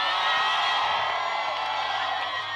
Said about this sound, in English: You are before God, and one thing that God likes is shouting. You are shouting into your next level.